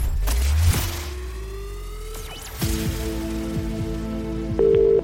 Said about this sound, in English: One ring. Two rings.